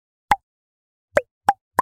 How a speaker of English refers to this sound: There are so many ways to use our own bodies to make music. Like clicking my tongue.